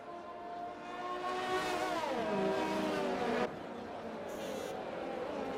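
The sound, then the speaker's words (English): Loud car engines roar past, their revving pitch rising and then sliding down as they go by. The noise cuts abruptly to a steadier, slightly quieter engine drone. “The cars.”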